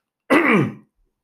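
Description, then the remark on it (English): A single loud throat clearing, a rough guttural rasp lasting about half a second before silence returns. “excuse me, bear with me 1 second while I clear my throat.”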